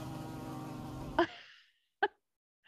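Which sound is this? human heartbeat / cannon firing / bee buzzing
bee buzzing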